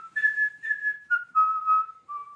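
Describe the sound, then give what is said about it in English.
A person whistles the opening bars of the Crow football song: a short, clear melody of sustained notes that step gradually downward in pitch, with brief breaths between phrases and no talking. “she always noticed me just always doing the start of the Crow song.”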